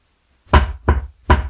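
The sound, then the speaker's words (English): Three distinct knocks on a wooden coffin holding a dead body, evenly spaced and fairly loud, each a dull thud with a short ring, with silence before and no voices. “And at this time, the student Jian Yuan went up to the coffin with the dead body in it and knocked on the coffin and asked the teacher, "Alive or dead?”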